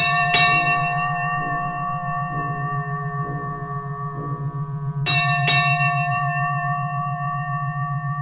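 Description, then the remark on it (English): A bell rings with bright, ringing harmonic tones, struck twice several seconds apart, with fainter repeated strikes between, each note sustaining over a steady low hum. “I can go back to bed, weigh myself, or ring the bell.”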